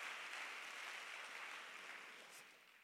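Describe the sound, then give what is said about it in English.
An audience in a church service claps their hands to the Lord as they are being seated, a dense, steady patter of many hands that stays soft throughout and tapers slightly toward the end, with no voices. “Clap your hands one more time unto the Lord as you're being seated in the house.”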